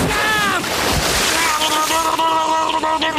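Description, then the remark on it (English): A golf cart plunges into a lake with a loud rush of splashing and churning water, while raised voices shout and scream over the commotion. “I got the water coming up. I got the lake coming up. Should I run it into the lake?”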